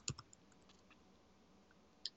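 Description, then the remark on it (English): Quiet typing on a computer keyboard: a quick cluster of key clicks at the start, a few sparse, faint taps, then one more sharp click near the end. No one speaks. “I want to hear typing and lots of fingers touching the keys.”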